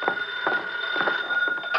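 A telephone rings with a steady electronic tone, with faint knocking or clattering sounds pulsing underneath at irregular intervals, moderately loud with no one speaking.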